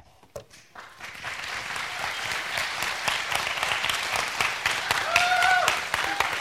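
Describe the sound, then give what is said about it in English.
A crowd breaks into sustained applause, dense overlapping claps building after a sparse start and holding steady, with a few faint cheers or whistles rising near the end. “Yes, that's something to cheer about.”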